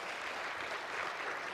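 A crowd applauds a volunteer in a steady, dense patter of many hands, a continuous even wash of applause with no voices standing out.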